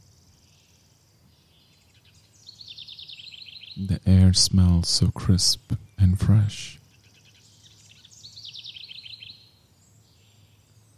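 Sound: birds chirping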